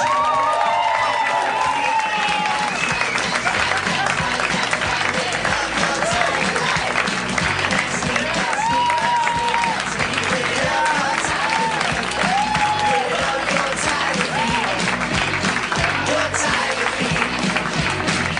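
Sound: audience applauding and cheering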